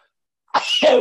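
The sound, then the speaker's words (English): A single sudden sneeze bursts out after a moment of quiet, a sharp intake flowing into a loud, breathy explosive release with no talking around it. “I'm sneezing”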